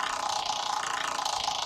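A prize wheel spins with a rapid, steady stream of ratcheting clicks, bright and continuous at an even pace, with no voices over it.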